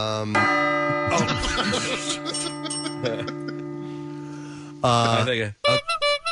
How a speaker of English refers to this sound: Are you going to get a bell for your tricycle? I think there is a bell on it. The ring, ring. Yeah. Here it is.